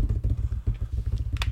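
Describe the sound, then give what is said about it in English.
A rapid, steady drum roll of low, thumping hits runs continuously for about a second and a half, ending with a brighter crash-like accent, played before revealing number 2 in a ranking of football players. No one speaks. “So number 2, we got a drum roll, please.”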